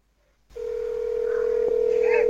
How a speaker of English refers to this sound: We're calling my grandfather, who is 93 years old, and he doesn't always hear the phone.